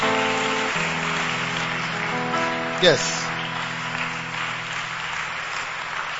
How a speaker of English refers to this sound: Clap for them.